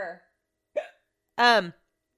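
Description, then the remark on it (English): Three abrupt voiced hiccups, the first trailing off, the second short and sharp, and the third the loudest, with a pitched, squeaky vocal tone. Gaps of silence separate them and no one speaks. “Let me take a drink of wine backwards. That's supposed to cure hiccups.”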